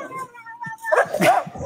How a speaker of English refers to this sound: Oh, another one. Rottweiler.